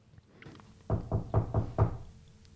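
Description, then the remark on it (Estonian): Five firm, evenly spaced knocks on a door in quick succession, fairly loud, made by a person as a sound effect in an acted scene, with nothing else in the background. “Ma teen helid ise.”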